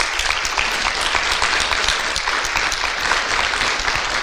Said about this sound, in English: So I'm going to invite them to come on up and share a little bit. Why don't you guys come up? Give them a big round of applause if you would.